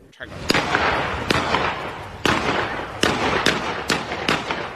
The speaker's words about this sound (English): A gunman blindly firing shots directly into an occupied home.